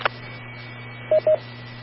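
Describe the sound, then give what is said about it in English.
Two quick touch-tone keypad beeps sound in close succession over a steady low electrical hum and faint background hiss, with no one talking. “But if it's going to work like a regular phone, then I would think a star code there somewhere would work.”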